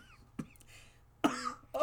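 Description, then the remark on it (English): Three short, shallow coughs in quick succession, fairly quiet, each a brief breathy burst separated by short pauses, with no talking. “These, like, shallow little coughs.”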